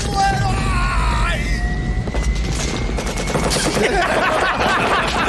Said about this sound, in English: He's still shooting. Yeah. Still shooting, man.